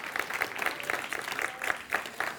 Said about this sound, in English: Yes, give Him a clap. He's worthy.